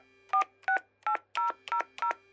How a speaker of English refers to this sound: hung up and stared at the phone for a second, then dialed.